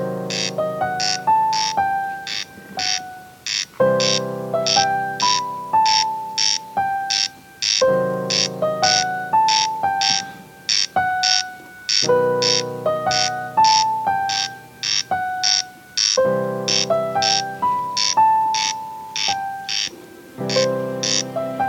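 A corncrake's dry, rasping call repeats in steady pulses, a few per second, over a sustained melodic instrumental backing whose phrases step down in pitch and restart several times.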